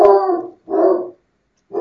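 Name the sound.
dog barking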